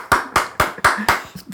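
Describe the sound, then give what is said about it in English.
A quick run of about six sharp, loud hand claps at an even, steady pace, made as sync claps for a recording, with the last one fainter and no talking over them. “That's going to fuck up the clap sync a little bit.”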